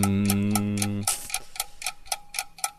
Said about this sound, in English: Clock's ticking.